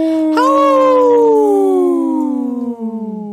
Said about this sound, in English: I was looking for this, Wendy. Yeah, the wolf. Howl.